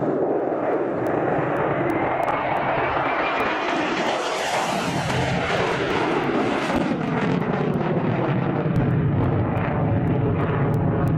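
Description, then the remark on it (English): A jet aircraft roars past overhead, its loud engine noise swelling as it approaches and then sliding lower in pitch as it moves away. The roar fills the whole clip, with no one speaking. “Well, here's the jet.”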